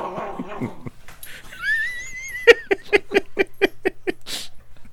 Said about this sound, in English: All we can hear is your dog. The dog, they're growling. Uh-huh. They're cute.